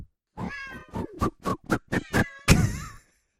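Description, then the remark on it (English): A cat being lassoed meows in a rapid string of short, clear mews, ending in one longer, drawn-out yowl. It is fairly loud, with no talking over it. “I like how you lassoed that cat.”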